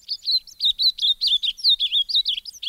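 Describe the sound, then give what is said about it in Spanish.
An ultramarine grosbeak sings a bright, rapid warbling song, a continuous run of quick high sliding notes, clear with no other sounds. “Para terminar, las alegres y ligeras notas de la reina mora grande.”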